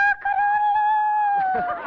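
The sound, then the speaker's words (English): A girl's voice imitates a rooster crowing: one long, high, sustained call held for nearly two seconds, fairly loud, ending with a breathy trailing-off. “Now, surely someone feels the urge to crow.”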